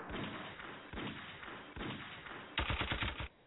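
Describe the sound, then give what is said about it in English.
Three booming single gunshots, evenly spaced and each trailing off in a short echo, followed by a rapid burst of automatic fire, loud with no voices. “Well, I got to get where my gunshots at on that one right there.”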